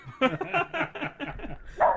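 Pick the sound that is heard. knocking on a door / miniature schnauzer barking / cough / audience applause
miniature schnauzer barking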